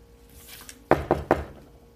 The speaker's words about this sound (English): What do you say when someone knocks on the toilet door?